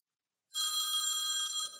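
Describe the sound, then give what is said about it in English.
A phone rings with an incoming call, a loud, steady electronic tone that starts abruptly after a short silence and holds for over a second, bright harmonic bands stacked high. “I think they're calling your phone”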